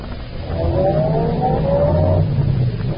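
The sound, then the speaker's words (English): A taxi engine revs and pulls away from a taxi line outside a hotel with a passenger bound for 132nd Street, its steady droning hum rising in pitch for about two seconds before easing off, with no voices. “tall man, dressed entirely in gray, detaches himself from the doorway of a shabby hotel where he's been loitering and approaches a taxi that has just moved up to the first place in line.”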